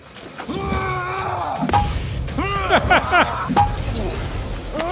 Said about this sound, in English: Why? Because of the sound effects of this hammer. Mm-hmm. It's hollow. It's hollow. You can hear that it's hollow. Dunk, dunk.